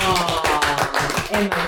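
A short, light golf clap: roughly eight or nine quick, evenly spaced hand claps over a couple of seconds, with a voice murmuring underneath.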